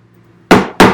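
Two loud, sharp hammer strikes land about a third of a second apart, each a hard ringing impact that decays quickly, following a faint low hum.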